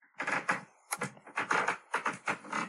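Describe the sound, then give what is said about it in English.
Wooden floorboards creak in a series of about eight rough, grinding bursts, each swelling and fading in an uneven rhythm, fairly loud, with no voices. “We'll find a floorboard creaking sound.”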